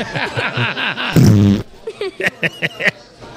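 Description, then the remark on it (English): A loud, buzzy fart lasting about half a second, with a voice just before it and a run of short, breathy snickers of laughter right after. “More farts.”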